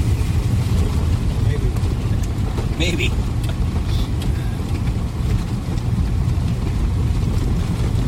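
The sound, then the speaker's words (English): A car engine drones steadily at low pitch as the vehicle pushes through a shallow river about 2 feet deep, with broad rushing water noise throughout and a brief spoken word partway through. “Well, here we go to cross the river.”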